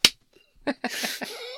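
A sharp, close open-hand slap cracks out at the start, followed after a pause by a softer smack and a noisy, breathy scuffle that trails off.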